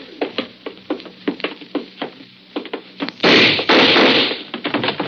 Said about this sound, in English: I got the door open.